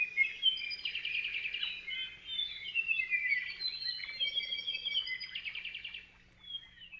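Song of the Elepaio, a Hawaiian bird: bright, overlapping chirps and whistled trills stream steadily for several seconds, a lively chorus with a faint low hum underneath and no talking.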